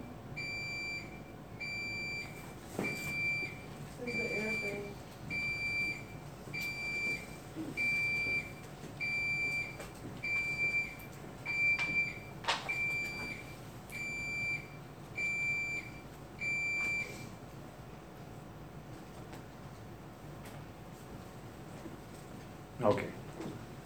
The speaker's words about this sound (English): What is that? That's an alarm from that system, right? I guess.